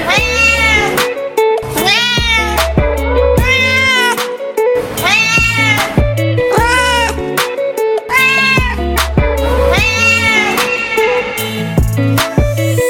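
A string of loud, drawn-out cat meows repeats in a steady rhythm over a thumping electronic bass line, like meows woven into a song, with no talking.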